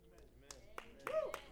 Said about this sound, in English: I think that we've got the sparse clap disease today. We've got the clap, and it's not, I'm just saying. We need to have some excitement.